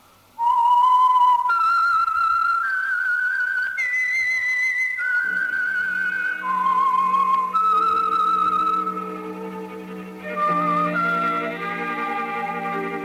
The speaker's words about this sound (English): Whistle is your signal for the Signal Oil program, The Whistler.